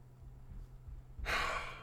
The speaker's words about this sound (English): No, I just yawned.